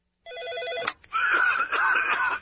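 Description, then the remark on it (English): An old PBX office phone system rings with a bright electronic warble, breaks off briefly, then rings again in a longer, buzzier trill. It is fairly loud, with no talking over it. “This is your old PBX phone system.”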